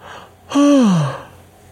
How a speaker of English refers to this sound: Yawning again. Dude, so I got to be honest. I actually tried to record this podcast yesterday about the same time. And I got about 5 minutes into it, and I stopped because I was just yawning so much.